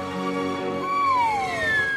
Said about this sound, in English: Ladies and gentlemen, with a special solo. On the slide whistle. On the slide whistle. Sure. Mr. Todd Glass.